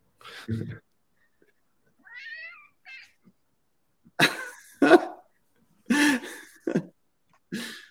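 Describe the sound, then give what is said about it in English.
A cat sitting on a person's lap gives two soft, short meows, followed by several harsh, breathy bursts like coughing or throat clearing. No one speaks. “And yeah, thanks to this cat for sitting on my lap.”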